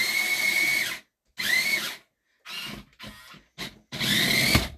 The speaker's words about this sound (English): Oh, no. It's still got batteries. Mario's revving up his chainsaw.